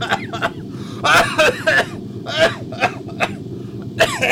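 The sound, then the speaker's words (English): A person fakes a cough, letting out a string of short, forced, breathy bursts in an uneven rhythm, some louder than others, over a steady low background hum. “Your fake coughing sounds nothing like why I'm going to hack up a lung coughing.”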